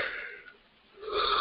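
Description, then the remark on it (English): A person yawns on a Monday morning before quarter past eight on the East Coast, with a long, breathy inhale that fades briefly, then swells into a louder airy exhale. It is heard alone, with no talking. “It's only Monday, and I'm already yawning.”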